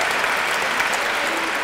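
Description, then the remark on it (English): An audience applauds a poet after a poem, clapping steadily, a dense wash of many hands applauding at an even, sustained level with no voices standing out. “Applaud the poet.”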